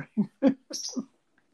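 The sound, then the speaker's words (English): A pet bird lets out a quick run of short, raspy calls, the third blending into a harsh hissing screech, then falls silent. No one speaks. “Maybe your bird was wanting to walk under a bus.”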